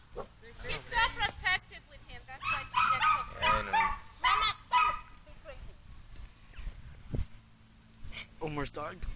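An 8-week-old Dachshund puppy yips and barks in quick, high-pitched bursts, a busy flurry over several seconds, then a pause before a few more sharp yaps near the end.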